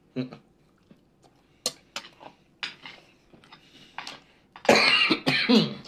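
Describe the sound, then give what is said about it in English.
A person coughs in several sharp, uneven bursts after choking on a swallow, ending in a loud, rough coughing fit, with small clinks like dishes or cutlery between the coughs. “Oh, excuse me. Wrong pipe.”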